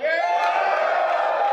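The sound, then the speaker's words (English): An audience yells to vote for the talk topic of how to get 100 million people to see your idea, in one loud, sustained burst of mixed voices lasting about a second and a half, steady throughout with no clear words. “Who votes for how to get 100 million people to see your idea? Yell.”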